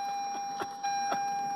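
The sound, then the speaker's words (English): A car's seatbelt warning alarm sounds as a steady, high electronic tone that holds without a break, set off by weight on an unbelted seat in a crammed car, with a couple of soft knocks in the cabin. No one speaks. “this alarm for the seatbelts keep going off because it's saying like, hey, there should be someone in the car.”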